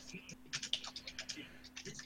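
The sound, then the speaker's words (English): Rapid typing on a computer keyboard, a quick uneven run of light clicking keystrokes, fairly quiet, over a faint steady electrical hum. “Oh, so we can hear the typing, but anyway.”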